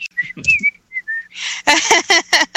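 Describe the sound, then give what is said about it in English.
A person whistles a few short, wavering notes, a casual, innocent little tune. It breaks off into a run of rough, breathy bursts. “Innocent whistling.”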